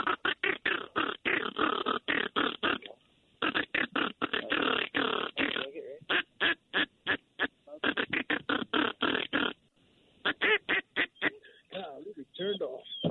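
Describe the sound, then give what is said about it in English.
Loud duck quacking in rapid, choppy bursts, running almost nonstop with a few brief pauses, as a flock of diving ducks approaches decoys during a duck hunt. “Oh, look at the birds. Oh, my gosh. There's a lot of divers.”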